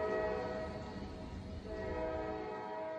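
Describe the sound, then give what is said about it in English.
A train rumbles steadily along with a low, constant roar while a sustained horn blares over it, loud, holding its steady tones for the whole stretch with no voices. “He is on a train, but he doesn't have a ticket.”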